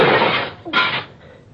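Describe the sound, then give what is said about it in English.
Window glass smashes in a loud, harsh crash, followed a moment later by a second shorter burst of breaking glass, then faint scattered tinkling as the pieces settle. No one speaks. “I'll break through the window and come around on the inside.”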